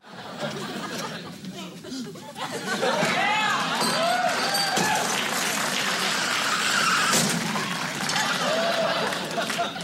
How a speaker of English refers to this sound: So, God, Al throws the bell and causes a car accident.